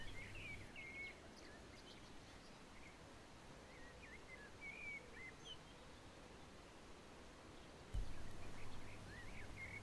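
Soft birdsong of birds waking at dawn, with scattered chirps and short trills, drifts over a steady, hissing outdoor background, with a low hum briefly present at the start and again near the end.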